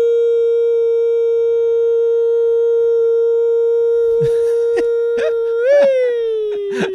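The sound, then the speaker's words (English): A voice imitates a tornado siren, holding one long, steady, loud wailing note for several seconds before it swells briefly and slides downward. A few short bursts of other noise cut in toward the end. “All of a sudden, you turned into a tornado siren.”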